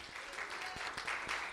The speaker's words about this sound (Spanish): Amén. Denle un aplauso a Dios otra vez más, ¿verdad? Amén.